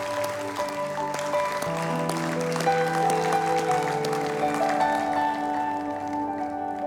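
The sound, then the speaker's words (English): A church audience claps its hands in praise of the Lord after a benediction prayer, a steady, dense patter that runs the whole way through, mixed with sustained organ or keyboard chords holding underneath. “Can we give the Lord a hand clap of praise for his faithfulness?”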